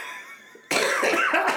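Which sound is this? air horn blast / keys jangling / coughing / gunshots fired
coughing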